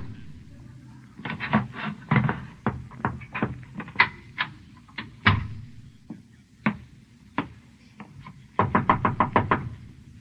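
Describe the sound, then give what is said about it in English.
Knocking on an unlocked door, an uneven series of sharp raps spread out over several seconds, ending in a quick burst of about six knocks, over a low background rumble. “Who is it? It's me. The door's unlocked.”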